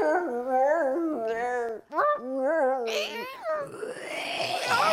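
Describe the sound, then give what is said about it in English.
Two dogs howl back and forth in long, wavering, tuneful cries with quick pitch wobbles, breaking briefly before rising again, then ending in a rough, noisy snarl-like burst. “We're going to start off here with a little cockfight here between two dogs”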